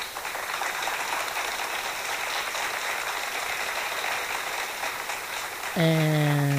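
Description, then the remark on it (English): A steady wash of crowd applause, dense crackling clapping that holds at an even level for several seconds before a bright harmonic tone cuts in at the end. “And we certainly rehearsed that applause long enough.”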